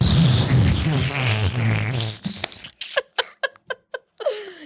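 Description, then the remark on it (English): A voice imitates a fart: a long, low, buzzing raspberry for about two seconds, followed by a rapid string of six short sputtering puffs, all loud. “you fart too.”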